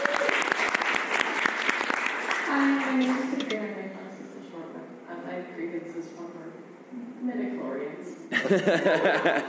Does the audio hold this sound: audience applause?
yes